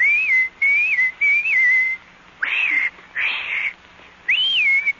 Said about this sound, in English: And anytime you need me, you know, just whistle like this.